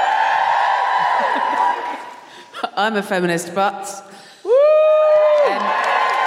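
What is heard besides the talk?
audience cheering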